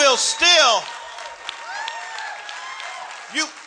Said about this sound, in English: You better clap your hands and shout.